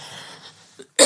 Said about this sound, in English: I apologize for coughing at you if I was.